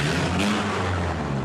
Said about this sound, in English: Back in Letterkenny, there's the usual crowds leaving the pubs and clubs. But there are also two huge tractors on the main street.